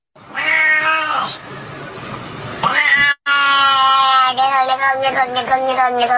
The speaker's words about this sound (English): I went out and I got a cat. The cat's being shipped as we speak. Here it is.